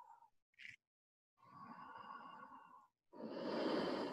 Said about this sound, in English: Create the sound of ujjayi breathing from your throat.